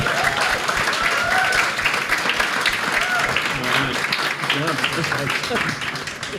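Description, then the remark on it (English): An audience applauds a panel steadily for several seconds, a dense, even wash of many hands clapping at constant loudness, with scattered voices and cheers mixed into the noise. “But for now, would you give our panel another round of applause?”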